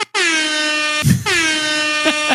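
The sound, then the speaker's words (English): Two loud, blaring air horn blasts with rich harmonic tones, separated by a brief noisy burst, followed by a short stuttering tail; dominant, with no talking. “That's what I should have done is fashion police with the air horn.”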